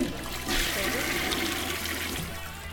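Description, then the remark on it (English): A toilet flushes with a loud, steady rush of water that surges in about half a second in and churns on, easing slightly toward the end. No one speaks. “Let's go with toilet.”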